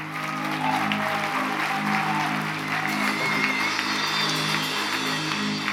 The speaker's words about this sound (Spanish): Así que hoy te damos honra. Tú eres el Señor de este lugar y recibe este aplauso que tus hijos te dan con todo su ser. Come on, lift it up.